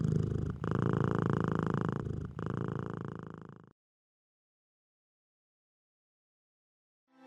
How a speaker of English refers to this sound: only response was a loud purr.